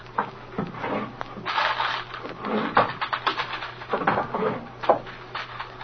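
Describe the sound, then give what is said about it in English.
Wooden desk drawers slide and knock as they are pulled open and rummaged through, with a steady run of scraping, rustling and clunking thuds and no talking. “I think we better get going through these drawers in the desk, though.”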